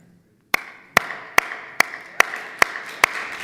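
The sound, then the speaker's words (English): Applause from a crowd, with sharp claps landing in a steady rhythm about twice per second over a continuous wash of scattered clapping. It starts abruptly after a brief silence, with no voices. “Wow. Thunderous applause.”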